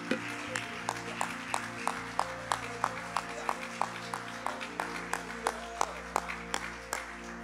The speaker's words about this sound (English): Could we clap our hands to the Lord one more time?